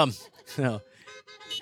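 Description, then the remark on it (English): A car horn sounds in a steady, fairly faint honk that drags on for a moment, following a burst of voices talking. “Yeah, there's one honk, so that's great.”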